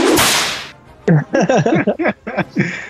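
A sharp, loud whip crack evoking Indiana Jones's whip, with a brief swishing tail, opens the sound, followed after a short pause by a voice making choppy, wordless vocal sounds.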